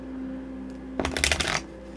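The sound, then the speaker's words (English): A quick, crisp riffle of a Gaia Tarot deck being shuffled, a dense burst of papery flutters lasting about half a second over a faint steady hum, fairly loud. “I shuffle this”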